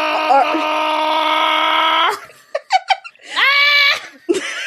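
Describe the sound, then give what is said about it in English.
A person screams loudly: one long, steady held scream, then a few short strained yelps, and another drawn-out scream rising and falling in pitch. “No, everyone must hear me scream.”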